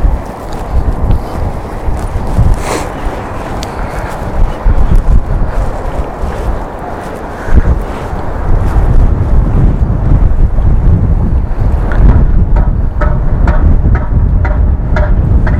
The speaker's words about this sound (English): And I don't know whether you can hear, but it is pretty windy out here. It's probably going to be too windy for the 4x5, just because of how lightweight it is.